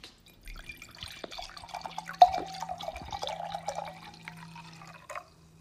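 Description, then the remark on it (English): A pink drink pours steadily into a glass for several seconds, a bright gurgling stream with a rising pitch as the glass fills, clear with no talking. “So pour up and enjoy some juicy topics or fun facts.”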